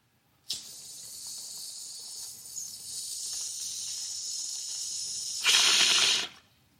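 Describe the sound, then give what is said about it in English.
Someone draws a long inhale through a bong, a steady airy hiss for several seconds that surges into a louder rush near the end before stopping abruptly. “let's take another rip.”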